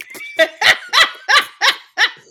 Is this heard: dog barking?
yes